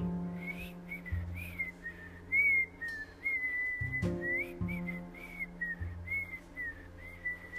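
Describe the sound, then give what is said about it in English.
A zookeeper whistles a lilting, wavering tune in a steady stream of short phrases, clear, over a low sustained musical backing. “I hear a zookeeper whistling in my ear.”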